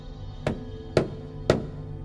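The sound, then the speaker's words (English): Three hard, evenly spaced knocks on a front door, each a sharp thud with a low woody body, separated by about half a second of quiet background hum. No voices. “The knocks come again.”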